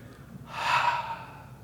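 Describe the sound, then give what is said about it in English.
A single drawn-out breathy exhale, a voiced "hhh" demonstrating the sound of the letter H, swelling and fading over about a second. It is moderately loud, with no talking around it. “Do you realize you can't say the H without breathing the breath?”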